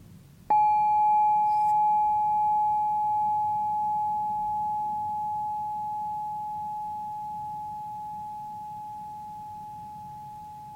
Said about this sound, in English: And I invite you to grab your bell, if you have one, and join me in let's just do one chime, and then we will let's do 20 seconds of just sitting together in silence.